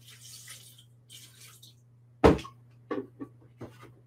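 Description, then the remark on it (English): Water is poured in to cover ingredients seasoned with salt, turmeric, garlic powder, onion powder and pepper, with a soft, steady splashing for about two seconds, followed by a loud knock and a few lighter clinks, like a container set down. “Just cover it with water.”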